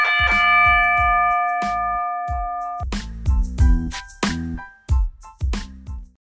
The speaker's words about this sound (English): With that said, let's get this show started. Ring the bell.